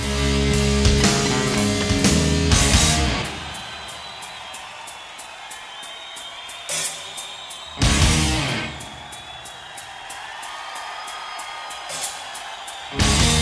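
A heavy metal song opens with slow, widely spaced crashing guitar chords and cymbal hits, each left ringing out into a thin sustained drone before the next blow lands; no singing.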